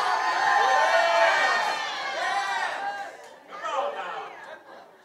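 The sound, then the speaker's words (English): An audience at a sermon on Philippians shouts and chatters at once, many voices in a loud, dense babble with whoops rising over it, easing slightly before a fresh burst of shouting near the end. “Well, stop shouting and taking all my time then.”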